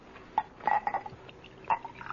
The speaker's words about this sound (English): Let me fill your glass.